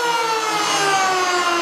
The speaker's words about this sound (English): Jesus Christ, you're sounding a tornado alarm.